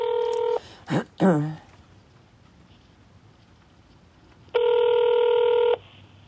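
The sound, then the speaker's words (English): Two long, steady ringback tones of a phone call to a mother in a nursing home ringing unanswered, separated by a few seconds of quiet line, with a brief voice-like warble just after the first ring. “Then I didn't hear from my mother, and I would call her cell phone, no answer, and I would call her room phone, no answer.”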